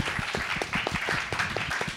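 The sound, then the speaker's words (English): Hands clapping in a quick, fairly even rhythm for about two seconds, sharp dry slaps over a constant hiss, with no talking alongside. “I think I'd give a clap for that.”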